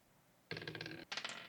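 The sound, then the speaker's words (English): Dice clatter across a hard table in two quick rattling bursts, a rapid patter of small hard clicks lasting about a second in total, with no voices, as players roll for initiative in a game. “Roll your initiative.”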